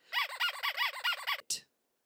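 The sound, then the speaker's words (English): A squeaky toy squeezed rapidly about seven times in a quick, steady rhythm, each shrill squeak wavering in pitch, ending with a short breathy wheeze. Loud, with no talking. “Use all the squeaky toys you need to.”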